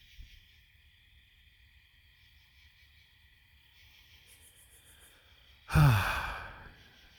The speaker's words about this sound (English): I don't know if you can hear that or not through the voice recorder on my phone, but those are all the bugs and frogs and whatever else lives out in the woods out here.